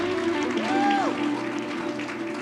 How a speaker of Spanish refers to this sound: los aplausos al rey.